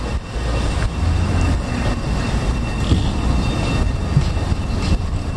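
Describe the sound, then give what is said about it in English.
A historic tram rolls along with a steady low rumble, continuous and fairly loud, with faint metallic squeaks and clunks over the drone and no voices. “Do I hear a tram coming?”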